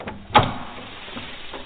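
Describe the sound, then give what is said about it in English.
An unlocked front door opens with a sharp click and brief clatter near the start, followed by a soft creaking swing and faint shuffling as it settles, with no voices. “Door's unlocked.”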